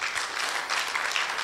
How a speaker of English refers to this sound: So give these guys a massive round of applause. They've been wonderful. They've been phenomenal.